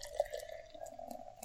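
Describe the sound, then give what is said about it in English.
B Street Blackberry Cream Ale, a 6% alcohol beer from Utah, pours steadily into a glass in a continuous gurgling stream with a ringing tone and small splashes, lasting the whole moment with no voices over it. “And the pour. Sure we don't. Are you actually going to pour it?”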